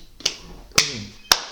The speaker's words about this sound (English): I'm sorry guys, that clap was poor for me.